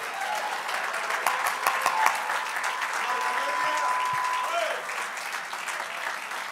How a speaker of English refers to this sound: Oh, I shouldn't have to pump and prime right now, but somebody here in the Holy Ghost ought to clap your hands and magnify the Lord.